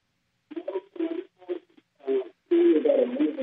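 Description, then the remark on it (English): A caller's voice comes through a narrow, tinny phone line with a bad connection, muffled and garbled in short choppy bursts, then turns into a louder, steady, distorted stretch at the end. The words are unintelligible. “Yeah, your phone's a little muffled.”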